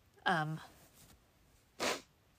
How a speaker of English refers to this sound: Sorry, I had to sniffle. Of course I'm having allergies, just like every other gosh darn time I record this podcast.